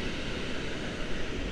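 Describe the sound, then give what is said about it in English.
A steady, dense roar of rough, angry sea surf at Westernmouth, waves washing and breaking continuously with no pauses, and no voices. “I've now descended down to Westernmouth. Sea's looking pretty angry.”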